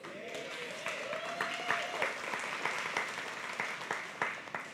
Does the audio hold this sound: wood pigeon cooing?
no